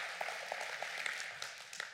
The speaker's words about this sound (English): Clap for Jesus then. Clap for Jesus. Wow.